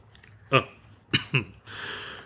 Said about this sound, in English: Oh. Weird time to just cough, I promise. Yikes. It's called the podcaster's timing.